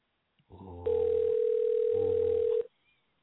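A loud, steady telephone dial tone sounds for about two seconds, a single unbroken hum over a faint buzzy background, then cuts off abruptly, as a phone call is being placed.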